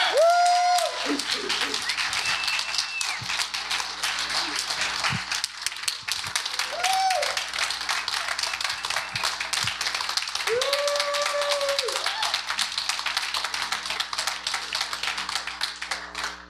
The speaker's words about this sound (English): So would you guys, at least initially, both come up so we can give a big cheer